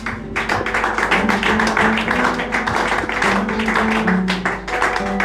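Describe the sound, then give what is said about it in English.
An audience claps steadily for several seconds, a dense, continuous patter of many hands, with low sustained musical notes shifting underneath. “The way you are clapping, it doesn't look like you are ready for what is about to come.”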